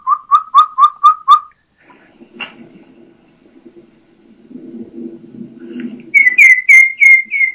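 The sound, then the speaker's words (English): A person imitates a young turkey's kee-kee call to draw out a hen turkey: a quick run of five high, whistled kee-kee notes, then a low rustling lull, and a higher, shriller series of four whistled peeps near the end. “So that was just me kikiing”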